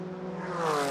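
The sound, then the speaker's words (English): Murillo Racing race cars pass on track heading from turn 4 towards turn 5 as the 72 car, driven by Christian Simchak on his out lap, is overtaken by its team car; a steady buzzing engine drone with layered harmonics swells louder and climbs slightly in pitch over one second, with no voices. “That's another one of the Murillo Racing machines, and he has just been overtaken by the team car as they were heading from turn 4 towards turn 5.”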